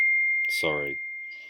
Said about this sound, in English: Sorry for the beep.